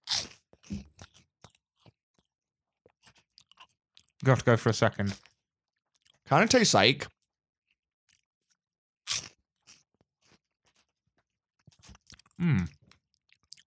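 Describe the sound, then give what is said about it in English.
Loud, brittle crunches of a Churupki crisp being bitten and chewed, coming in a few short bursts with quieter chewing between, while people talk briefly around them. “Eat this crisp anyway.”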